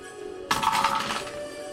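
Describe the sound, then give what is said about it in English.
A twenty-sided die (d20) is rolled for a second axe attack in a tabletop game, clattering across a hard table in a quick burst of bright, rattling clicks that start abruptly and trail off after under a second, with no talking. “Oh, yeah, roll the second one.”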